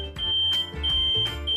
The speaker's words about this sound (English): 4 beeps in a row means your carbon monoxide detector is activated and you must get outside to breathe fresh air immediately. Stay outside and call 911.